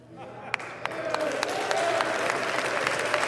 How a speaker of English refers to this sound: All right, so you just heard what Matt Gaetz said. You hear that applause at the end of the speech. Those are Republicans, obviously, not Democrats.